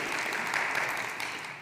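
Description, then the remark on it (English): An audience applauds steadily, a dense, even wash of many hands clapping at once that holds at a fairly loud level throughout without pause or build. “Listen, the applause is great, you know, when you just hug them and say, listen, I just want to tell you how great a job you did.”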